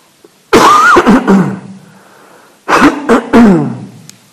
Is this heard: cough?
yes